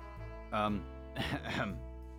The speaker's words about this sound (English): I just coughed out a piece of the fucking beef jerky.